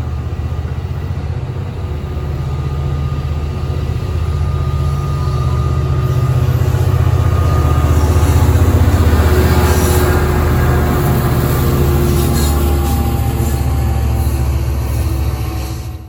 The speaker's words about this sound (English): And in the meantime, let's watch this Amtrak train depart.